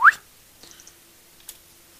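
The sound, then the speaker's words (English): A quick, loud upward-sliding whistle blasts into the microphone at the start, followed by a few faint high chirps, a soft click and a low steady hum, with no talking. “Let me not whistle into the microphone again.”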